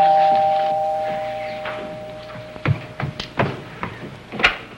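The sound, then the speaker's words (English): A front doorbell chimes with sustained ringing tones that slowly fade, followed by a few scattered thumps and clatters. “What's that? That's the front door, dear.”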